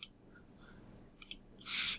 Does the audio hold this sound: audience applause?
no